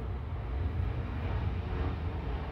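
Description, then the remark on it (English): A steady, heavy roar of a military plane from a military base airport passing overhead a campus, loud and continuous with deep low-end rumble and no voices over it. “The military base airport, we get so many loud planes over our campus.”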